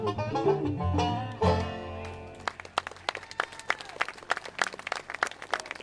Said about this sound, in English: Thank you kindly. Well, we appreciate your hand applause.